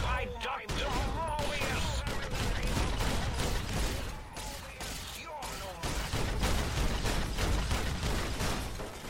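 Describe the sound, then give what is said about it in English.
Loud video game explosions and rapid gunfire-like blasts burst out one after another for several seconds as the player attacks a couple of robot scorpions, with a busy, mechanical clatter filling the gaps between them. “The explosions you heard were me attacking a couple of Dr. Mobius's robo-scorpions”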